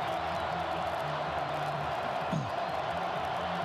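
A stadium crowd at a football game roars in a steady, dense wash of many voices, holding at a constant loud level throughout without clear breaks or individual cheers standing out.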